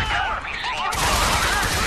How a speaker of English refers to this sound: Notice these gunshots.